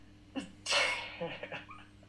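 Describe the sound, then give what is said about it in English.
A dog that needs to go outside to pee lets out a sharp, sneeze-like snort, followed by a few short, soft whining noises as it fidgets impatiently. “My dog's got to go out to take a leak.”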